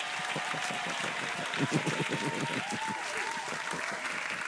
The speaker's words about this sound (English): Clap, clap, clap. Slap, slap, slap. Slap, slap, slap. Clap, clap, clap, clap.